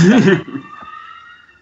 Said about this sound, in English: Did a siren actually just go off as we were talking about 9-1-1? Nope, those were small children yelling somewhere. Oh, I thought that was a Canadian siren. My mistake. Nope. That was a number of them of small children yelling.